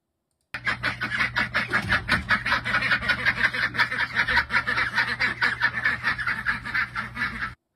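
A flock of cooped-up ducks quacks continuously and rapidly, many calls overlapping in a dense, busy chorus, with a low steady hum underneath.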